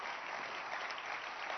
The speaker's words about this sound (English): Let's clap your hands